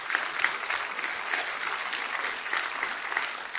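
An audience breaks into sustained applause, a dense, steady crackle of many hands clapping with a few faint whoops and cheers mixed in, holding at an even level throughout.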